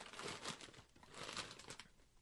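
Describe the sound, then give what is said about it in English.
A birthday gift package being torn open, with soft, irregular bursts of crinkling and ripping wrapping over about two seconds, fairly quiet and with no one talking. “So I'm going to open it right now. I haven't even opened it yet. And it's a birthday gift.”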